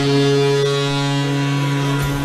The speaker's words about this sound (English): Ah, that joyous sound of the Mariners' home run horn can only mean one thing.